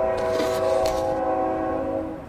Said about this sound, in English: hold on, train's coming.